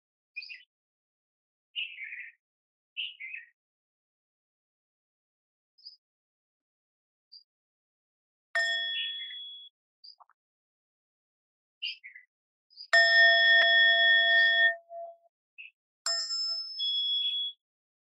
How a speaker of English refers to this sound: And now I'll invite the sound of the bell again. So be aware of this miracle of hearing. And those of you who have your eyes closed, when you open your eyes after two sounds of the bell, be aware of the miracle of seeing forms and colors and shapes.